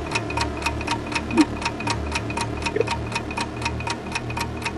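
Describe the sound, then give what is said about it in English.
A 60-second game show countdown clock ticks in a fast, steady rhythm, each sharp tick evenly spaced over a low, sustained background drone, with no voices. “Your clock starts now.”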